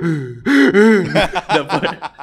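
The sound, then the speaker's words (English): A voice imitates a child's exaggerated cry: two drawn-out, whiny wails give way to a quick string of breathy, hiccuping gasps, fairly loud. “They're overly breathing.”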